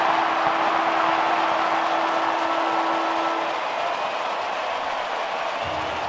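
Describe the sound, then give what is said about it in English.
The end-of-game siren at the SCG blares as one steady, low-pitched tone for about three and a half seconds as Sydney beat Collingwood by 27 points, then cuts out while a loud, continuous roar from a crowd of nearly 45,000 carries on underneath and after it. “Siren about to sound.”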